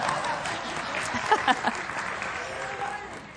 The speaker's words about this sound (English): Give me a hand clap. No, not really.